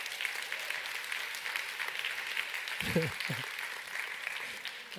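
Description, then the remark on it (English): Sustained audience applause for the speaker's 29th wedding anniversary fills the whole stretch, a dense, even patter of many hands clapping at a fairly steady level, with a brief low vocal sound breaking through partway. “You should actually be clapping for my wife.”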